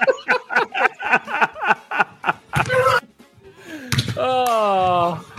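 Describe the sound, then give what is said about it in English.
A run of snickering laughter gives way to one sharp, loud slap to the face, followed after a brief pause by a drawn-out, wailing vocal cry. “Slapped him in the face and got the bucket.”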